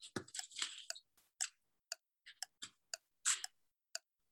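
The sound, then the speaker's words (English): A timer ticks with crisp, dry clicks, starting in a quick cluster and then settling into a sparser, slightly uneven run of single ticks, heard alone. “hit the clock.”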